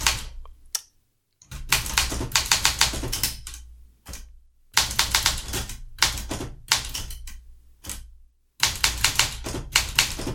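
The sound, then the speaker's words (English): Mechanical typewriter keys clack in rapid bursts, sharp percussive strikes coming in quick runs separated by short pauses. Loud and crisp, with no voices present. “It made delightfully clacky noises while it wasn't jammed.”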